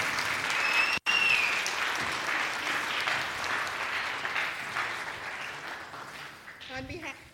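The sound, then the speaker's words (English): An audience breaks into a sustained round of applause for a class of prospective new church members at the front, dense steady clapping that holds for several seconds before tapering off, with a voice briefly emerging at the end. “So round of applause, praise God for that, right?”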